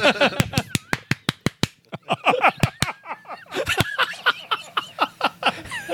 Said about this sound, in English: I know there's clapping in there. I just don't know the sequence of it.